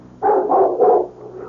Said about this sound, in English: Hear what? A dog barked 3 times. One of the valley dogs, Oscar. That was no valley dog. That was the big black dog. The big black dog that barks 3 times when somebody dies.